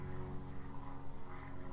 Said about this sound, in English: Actually, I think that's a plane. But we do have helicopters going over.